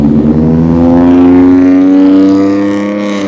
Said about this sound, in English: This guy's car is loud.